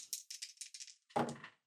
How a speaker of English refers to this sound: So we're going to make a percentile die roll to see if she smashes.